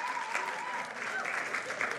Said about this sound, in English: Can we just pause and just, can I just get an applause for reading that, all those do's the first time?